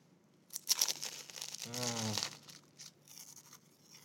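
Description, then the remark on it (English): In a studio, someone bites into a pain au chocolat with a crisp, flaky crackle and tearing, followed by a brief low hummed murmur, then soft chewing crinkles. “I'm gonna bite into this pano chocolat right now.”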